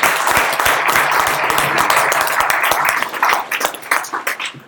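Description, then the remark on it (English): A crowd applauds with dense, crackling clapping that holds steady and loud for about three seconds, then thins into scattered individual claps as it fades out. “Also terrifying, but let's give him a round of applause for that at least.”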